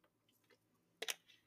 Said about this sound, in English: So I have my mirror and I have my water. And I'm going to go ahead and drink a sip of my water.